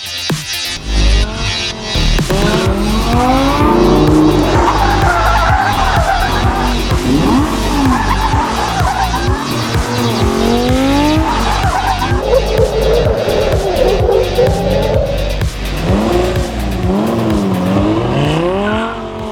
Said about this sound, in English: But the most important thing for me is when you sit on the car, when you turn the key on and you start and you go and you drive the car.